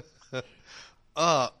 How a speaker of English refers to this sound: I am coming out of a cold, and coughing is... I can't laugh at the coughing anymore.